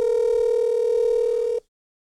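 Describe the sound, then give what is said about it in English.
A phone call ringing tone plays over a speakerphone held next to another phone to record it: one steady, slightly buzzy electronic tone lasting under two seconds, loud, then cutting off abruptly into silence. “I use the advanced recording technique of putting it on speaker and holding it next to my phone until Joe wakes up”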